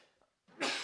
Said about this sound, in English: I'm going to sneeze.